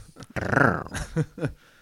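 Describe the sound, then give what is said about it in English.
A person imitates the rough, throaty growl of a dire wolf, one sustained snarl followed by two shorter guttural bursts, fairly loud. “Dire wolves don't make those noises.”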